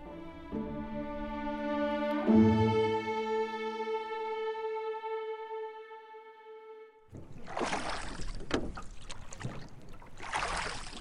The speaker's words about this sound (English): Ludlov sat in the middle of the boat next to Alvarado, facing the aft and rowing away from the Teresia.